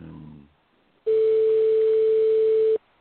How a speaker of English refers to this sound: The number is ringing.